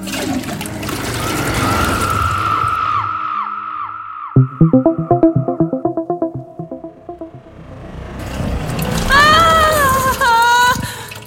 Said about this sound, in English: Oh, I have to tell the toilet where we're going before we flush. I can't decide if I hope you're joking or telling the truth. Hit the handle and find out.